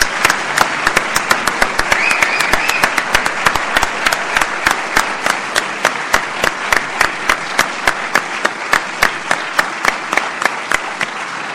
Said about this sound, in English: Ladies and gentlemen, that brings us to the end of this evening's events. How about one more big round of applause for our six award recipients?